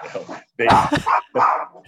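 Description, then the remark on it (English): Two excited dogs barking in a few quick, loud bursts, the yaps tumbling together with short pauses between them. “Also, my colleagues are two dogs who get excited.”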